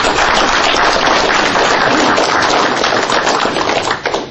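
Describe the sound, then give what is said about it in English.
An audience claps steadily and loudly for a speaker being introduced, a dense wash of overlapping hand claps that holds for several seconds before beginning to thin out at the end. “So, if you all give a round of applause”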